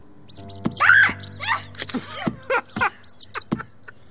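Mice inside a doll squeaking in a flurry of shrill, high-pitched chirps and squeals, coming in quick irregular bursts over a faint low hum, with no one talking.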